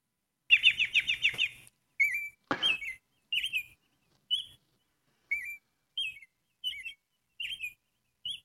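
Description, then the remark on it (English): An American robin sings a clear, caroling song of short whistled phrases, an opening rapid burst followed by separate warbling notes spaced about half a second apart, alone with no talking. “But when you just listen, it's just such a beautiful song. This is the American robin.”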